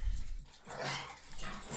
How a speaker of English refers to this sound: There goes your dogs.